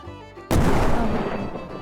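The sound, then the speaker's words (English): A single loud cannon blast erupts after a brief quiet tonal stretch, its deep booming roar rumbling and slowly fading over the next second and a half. “Why is the cannon still here in this alternate realm?”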